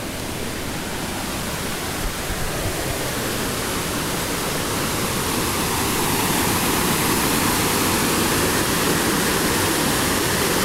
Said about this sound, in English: If it sounds like there's a giant waterfall there, that's because there is one.